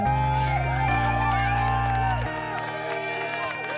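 A canned crowd cheering effect triggered by pressing a button in a studio, with whoops and shouts swirling over a steady, loud backdrop and deep sustained tones that drop in two steps before it thins out.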